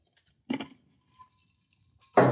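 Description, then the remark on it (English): Two short sipping sounds from hammered copper mugs, separated by a quiet pause with a faint ring, the second sip louder and sharper than the first. No one speaks. “We're going to take another sip just to remind ourselves of how delicious this drink.”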